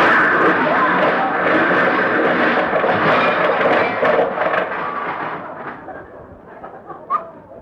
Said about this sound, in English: Oh, my goodness, we hit Mr. Freeman's car.